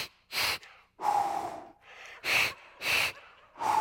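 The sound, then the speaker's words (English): A voice imitates rhythmic Lamaze-style labor breathing, the technique called the choo-choo used when coaching a woman through labor: quick, forceful puffs and huffs in a steady pattern, about six breaths, with short pauses between them and no talking. “and this was called the choo-choo.”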